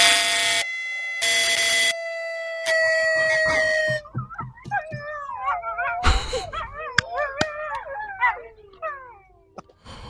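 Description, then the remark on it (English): Three loud, steady, horn-like blasts, then a pack of wolves howling together, their overlapping voices sliding up and down in pitch with a few sharp yips mixed in. “Okay, we just got to get them howling in one, two, three.”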